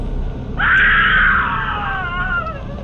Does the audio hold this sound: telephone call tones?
no